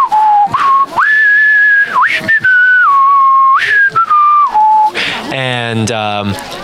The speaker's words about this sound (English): sort of like whistling over by the fire.